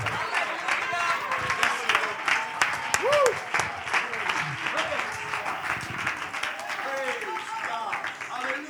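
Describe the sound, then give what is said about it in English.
An audience claps hands to praise God in sustained, dense applause, many overlapping claps forming a steady roar, with scattered voices calling out and cheering underneath. “Oh, let's clap our hands and give him great praise.”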